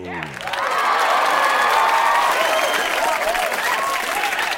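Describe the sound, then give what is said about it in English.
A live studio audience welcoming a stand-up comedian onto the program breaks into loud, steady applause that swells within the first half second and holds, with shrill whoops and cheers rising and falling over the clapping. “Oh my, the live studio audience is excited to see you today, my dear.”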